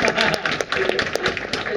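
An audience claps steadily throughout, a dense, crackling wash of many hands with scattered sharper claps standing out, fairly loud and continuous for the whole stretch.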